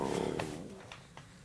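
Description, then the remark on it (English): A low, gurgling stomach growl rumbles into a microphone for about half a second, loud at first, then fades into a few faint wet clicks and quiet gurgles. “Is your stomach growls right into the microphone? Stomach growling, sorry.”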